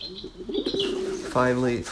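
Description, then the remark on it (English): Pigeons coo in low, warbling throaty tones that roll on for about two seconds, ending in a brighter, louder coo, with faint high chirps in the background. “They're little wings that you can put on so that you can integrate with the birds in the park and be like that one guy with all the pigeons.”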